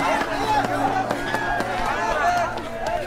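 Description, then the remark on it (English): A busy crowd chatters all around, many overlapping voices blending into a steady, lively babble with occasional sharper clatters and thumps cutting through. “We'll lose ourselves in the crowd.”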